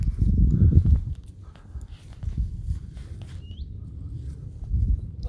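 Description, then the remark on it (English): Wild horses walk over soft ground on wetlands, hooves thudding in a loose, uneven rhythm under a low rumble of outdoor noise, with a brief faint bird chirp partway through. “We now have horses. So they can navigate wild horses down on the wetlands.”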